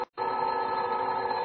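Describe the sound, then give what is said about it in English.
A telephone on a night table at home rings loud, a sustained metallic bell trill that starts abruptly after a brief silence and keeps going steadily with no voices. “Gosh, it started to ring.”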